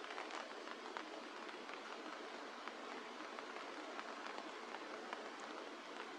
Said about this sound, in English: Thank you for the rain.